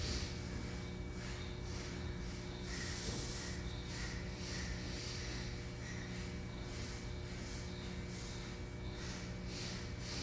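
Rhythmic breathing exercise: three short, sharp nasal sniffs drawing air in, followed by six quick, breathy exhalations, repeating steadily over a low constant hum, soft.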